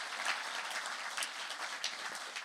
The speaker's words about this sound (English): So would you give her a round of applause in her absence? Thank you so much.